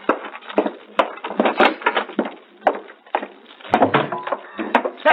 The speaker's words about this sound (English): This step. I put my foot through.